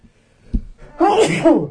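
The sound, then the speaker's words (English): A single loud sneeze with a sharp intake beforehand and a bright, wet, explosive burst lasting under a second, surrounded by quiet. “Gesundheit.”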